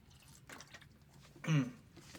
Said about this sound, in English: I know I'm talking forever, but let me just take a sip of this freaking Vita Coco.